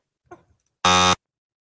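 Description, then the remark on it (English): A single loud, harsh buzzer blares for about a third of a second, a rich droning tone like a game-show wrong-answer sound, preceded by a faint brief rustle. “That's a really bad buzzer, by the way.”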